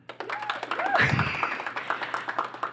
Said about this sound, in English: Okay, so if you would like to vote for Uncut Joms, please clap.